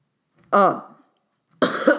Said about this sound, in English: You're coughing into a microphone. No, I coughed away from it.